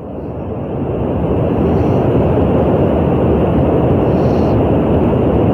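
Steady brown noise, played for listeners to guess, a broad, even hiss weighted toward the low and middle range with little top end, like an airplane cabin's hum. It swells in over the first second, then holds constant, with no talking.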